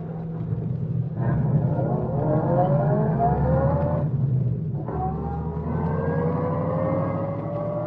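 A car engine roars as it accelerates on a highway in pursuit of another car, its pitch climbing steadily, dropping briefly as if shifting gear, then rising again over a constant low rumble, loud.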